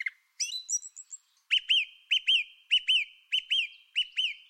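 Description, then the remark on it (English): A male songbird sings clearly from high in a tree, opening with a quick run of varied high notes, then repeating a bright two-note whistled phrase over and over in a steady rhythm. “Every once in a while, the male will sing a more complicated phrase full of twiddles that he doesn't repeat, but soon he returns to his pattern of sing, repeat, and move on.”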